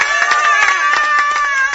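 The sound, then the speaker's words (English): A crowd of campers at a camp cheers and claps together, a loud, steady burst of applause with excited voices shouting over a dense patter of hands, continuous throughout. “getting tremendous rounds of applause so far”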